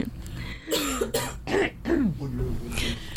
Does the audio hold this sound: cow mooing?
no